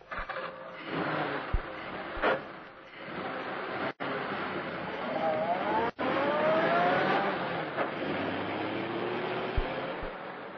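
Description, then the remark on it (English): A new car, pushed down the slope of a road at midnight, has its engine start up and accelerates away. The steady roar climbs in pitch, with a few sharp clunks early on. No one speaks. “The two men pushed the automobile down the slope of the road, jumping in when the car began to gather speed.”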